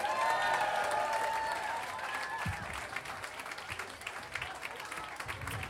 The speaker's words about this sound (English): Thank you so much for your applause, for your attention.